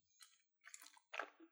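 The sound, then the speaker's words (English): Three wet gulping sounds of someone drinking water, each swallow a short, squishy burst with brief pauses between, fairly quiet and with no talking. “I need to drink water for this question.”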